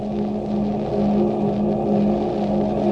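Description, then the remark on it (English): A steady, droning engine hum from a boat's engines runs continuously and loud throughout, with a constant low tonal rumble and no voices, the motors churning along at an even pace. “After a while, the motion of the boat and the humming of the engines lulled me to sleep.”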